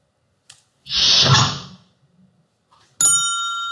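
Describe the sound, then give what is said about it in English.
A brief click, then a loud airy hiss-whoosh of a USS Enterprise sliding door from Star Trek lasting about a second, followed after a pause by a bright ringing electronic chime. No talking. “Was that a door from the USS Enterprise? Yes, it was.”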